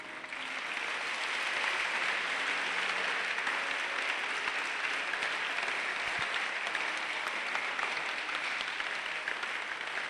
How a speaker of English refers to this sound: Stand to your feet. Why are you clapping?